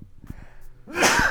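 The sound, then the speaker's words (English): A single loud sneeze bursts out after a brief quiet inhale, sharp and breathy with no talking around it. “Bless you, my love.”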